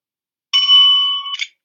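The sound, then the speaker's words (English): A single bright bell tone rings out to mark a cut in a recording, holding a steady pitch for nearly a second before cutting off with a brief, sharper jangle. No one speaks. “He's gonna give you a bell.”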